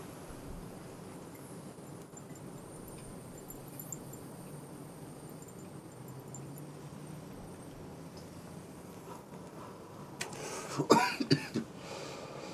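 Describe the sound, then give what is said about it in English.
A steady low background hiss runs for about ten seconds, then a short cluster of three or four sharp coughs breaks out near the end, after a hit from a Peak Pro vaporizer rig, before it settles again. “And I'm over here coughing.”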